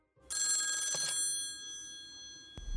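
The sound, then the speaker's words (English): A telephone bell rings once for an incoming call to a call-in show, a bright, metallic, sustained trill that slowly fades, followed by a brief low thump near the end. No one speaks. “Did you hear our next call?”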